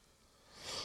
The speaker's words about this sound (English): Fuck, still a little bit sick. Still coughing a little bit. If you listened to the last episode, I was doing that a lot more.